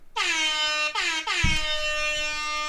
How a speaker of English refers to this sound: All right, Christian's air horn.